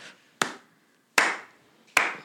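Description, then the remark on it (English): Three sharp, isolated hand claps spaced evenly about three-quarters of a second apart, a deliberate slow clap with a short ringing decay after each one and no voices. “Darby is slow clapping.”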